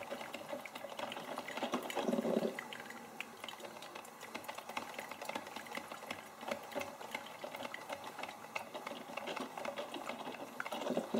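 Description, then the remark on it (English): A coffee maker gurgles and crackles steadily as hot water sputters through and trickles into the pot, a continuous patter of small pops and hisses with no voices. “And then that crackling, squishing sound of the water mixing and beginning to fill the coffee pot.”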